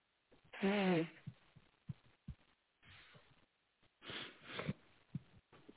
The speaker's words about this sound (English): Hold up. Let me blow my nose.